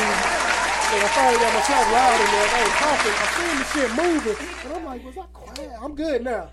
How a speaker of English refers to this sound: Let me go clap it up right there.